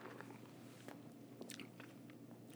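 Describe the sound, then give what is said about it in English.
Someone takes a small sip of American lager beer, with a few quiet, wet slurping and mouth-click sounds scattered over a couple of seconds and no talking. “But I'm going to take a little sip.”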